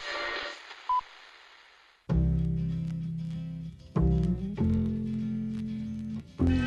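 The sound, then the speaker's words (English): A phone ringtone plays loud, sustained electronic tones arriving in a few long bursts with short breaks, after a brief stretch of hiss and a single short beep; it is the second time the phone has rung. “Which phone is that? That's the second time it's gone off.”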